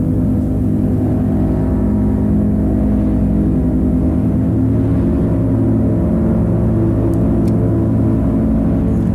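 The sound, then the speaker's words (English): A motorcycle engine rumbles steadily and loudly for the whole stretch, a deep layered droning hum with a slight rise in intensity partway through, and no voices. “I think she might be waiting for James, and maybe we're hearing the motorcycle.”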